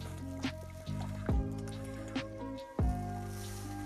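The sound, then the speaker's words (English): Drinking water, with several wet gulps and swallows spaced about a second apart over a low background hum. No one speaks. “Hold on, let me hit some water.”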